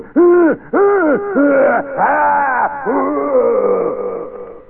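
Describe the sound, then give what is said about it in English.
A giant King Kong-like monster roar, loud, bursts out as a series of drawn-out, wailing growls that rise and fall, the last one stretching into a long moaning bellow with no talking. “Witnesses gasped in astonishment as a King Kong-like creature picked up a bicycle and threw it with a giant roar at a passing car.”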